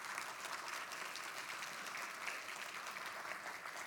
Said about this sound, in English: Let's give a round of applause to God for that.